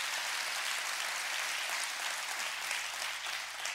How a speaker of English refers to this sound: I need a hand clap on that.